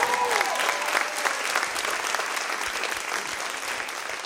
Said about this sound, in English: And that's why when you come to this place, it's okay to celebrate and clap and to cheer. It's okay. Why? Because you're not coming to a funeral. You're coming to the celebration of the King of Kings and the Lord of Lords.